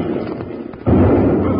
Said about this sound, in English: It's a balloon. Yeah, and somebody's shooting off bombs from it. There it goes again. Yeah, the wind's blowing it this way fast.